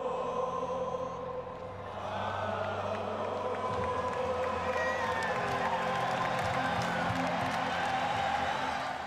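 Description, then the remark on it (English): At the very end of a band's show at a West Midlands venue, a huge concert crowd spontaneously sings an anthem together in a sustained, swelling chorus, thousands of voices blending into a loud, reverberant wall of sound with cheers mixed in, steady throughout. “It is the very end of their show, and all the members of the band are simply astonished when the crowd begins to spontaneously sing this anthem,”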